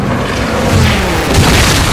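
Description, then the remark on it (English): A deep, rumbling boom rolls through a continuous roar, with a second heavier blast swelling near the end, as an anti-aircraft shell bursts on a Helldiver plane diving at the battleship Yamato amid sustained battle noise. No one speaks. “A helldiver diving for Yamato catches a shellburst.”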